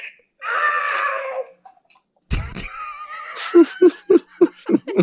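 A creature in a Spider-Man video game lets out a strained, wavering scream of pain when the player messes up, then a sudden thud, followed by a run of rhythmic, stuttering yelps that sound almost like laughter.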